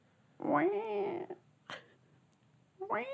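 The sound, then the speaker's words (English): A human voice imitates a cat's meow: a drawn-out, wavering mew, then a short pause with a brief click, and a second rising meow starting near the end. Fairly loud. “There's another cat?”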